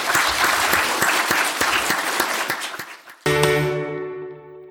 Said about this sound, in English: Okay, let's just give another round of applause for Eva Wiener.